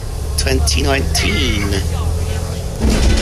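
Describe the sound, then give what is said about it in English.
Steady low engine rumble fills the interior of a moving bus heading into Great Yarmouth, with a person talking over it and the drone swelling briefly near the end. “are on the bus at the minute.”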